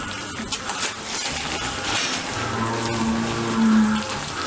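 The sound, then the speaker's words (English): A man bathes in a big vat of liquid cow manure: continuous wet sloshing and splashing in the thick liquid, steady, with a faint, low drawn-out tone emerging briefly toward the end. Cows are in the background. “Listen to him sloshing around. He is completely covered in poo.”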